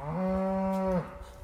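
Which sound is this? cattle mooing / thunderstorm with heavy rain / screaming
cattle mooing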